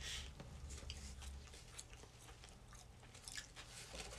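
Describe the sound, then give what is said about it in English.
Chewing of food, with repeated soft crunchy bites and wet mouth sounds in an irregular rhythm, fairly quiet and with no talking. “Why are you eating it?”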